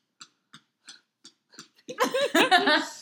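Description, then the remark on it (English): A chunky dog breathes heavily, taking six quick, evenly spaced breaths. Then a louder, rougher voiced noise takes over for the final second. “please stop breathing like that. You're so chunky.”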